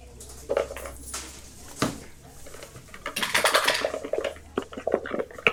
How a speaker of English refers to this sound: Oh no, the dice tower broke.